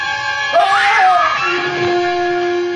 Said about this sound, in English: Thanks for screaming in my ear,